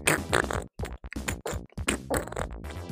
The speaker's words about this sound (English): It's got those farty like mushroom sounds.